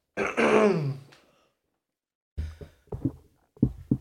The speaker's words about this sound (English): Got that yawn done?